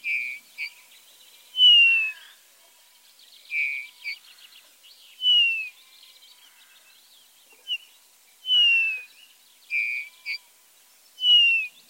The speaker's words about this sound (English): Well, let's hear the bullfinch, since you are so keen on him. This is him learning a human song from his trainer, who's whistling to him. But first, the sound of the bullfinch.